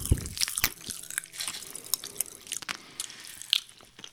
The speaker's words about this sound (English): Oh, I'm chewing it. Oh. Activated by the saliva in your mouth. It's very fizzy.